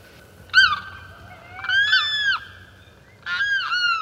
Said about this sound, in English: Most fascinating of all the sounds that come from the larger southern swamplands are the weird cries of the limpkins. Perhaps they have given rise to some of the superstitions that haunt our fast-disappearing marshes.